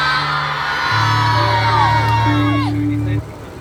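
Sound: audience shouting and cheering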